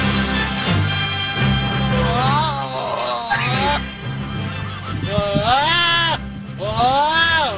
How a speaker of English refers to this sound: Did you bring a goat in here